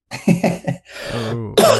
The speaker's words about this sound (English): Excuse me. I just coughed here.